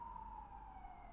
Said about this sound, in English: Right on cue in Brooklyn too. Siren.